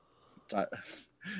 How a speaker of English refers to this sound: No, bro. I was just getting a stupid yawn out of my system.